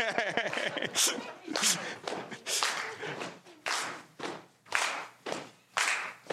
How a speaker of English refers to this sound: Alison's clapping. The rest of us are scraping.